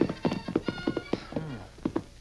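Horse hooves clip-clop in a quick, steady rhythm at moderate volume, broken midway by a short, wavering whinny before the hoofbeats resume.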